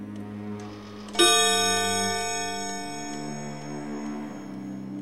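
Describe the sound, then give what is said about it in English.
A clock bell chiming the quarters strikes once, a bright resonant chime that rings on and slowly fades over a steady low humming drone. “He lay in this state until the chime had rung 3 quarters, when he remembered that the ghost had warned him.”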